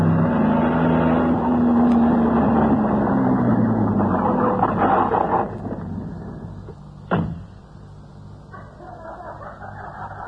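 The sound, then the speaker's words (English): A car engine idles with a steady, low hum for several seconds, then fades to a quieter rumble before a sharp thud like a car door closing cuts through. “Spotlighted in the glare from the car, they embraced and kissed, and the girl fumbled in her purse for a key.”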